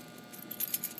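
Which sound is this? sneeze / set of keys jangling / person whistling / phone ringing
set of keys jangling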